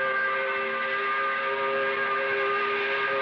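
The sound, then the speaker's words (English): A factory 5 o'clock whistle blows in one long, unbroken blast, a loud steady chord of layered tones that holds at the same pitch and volume throughout, with no voices. “You're walking out the plant, blowing the 5 o'clock whistle.”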